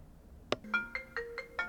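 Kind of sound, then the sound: signal or alarm, phone ringtone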